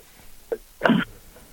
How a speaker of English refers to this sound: Excuse me, I'm coughing a little bit. All that dust in the desert.